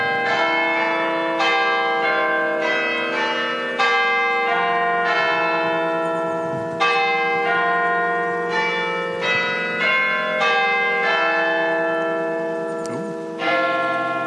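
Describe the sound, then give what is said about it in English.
Bells of a Gothic minster church chime the hour loudly in a steady sequence of strikes, each ringing tone overlapping the next with a long shimmering decay, with one bell missing from the sequence. No voices are heard. “There's one bell missing on that one.”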